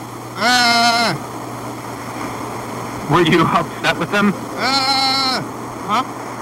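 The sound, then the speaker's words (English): Two loud, drawn-out goat bleats, one near the start and another near the end, each wavering and nasal, with a brief exchange of speech between them over a steady background hum. “There was goats.”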